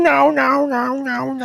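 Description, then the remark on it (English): A person imitates a screeching pterodactyl with a loud, drawn-out wavering cry that swells four times in quick succession, with no other sounds. “I have screeching dinosaur cats.”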